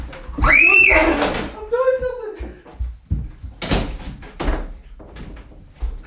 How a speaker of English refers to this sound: Well, let me just lock the door.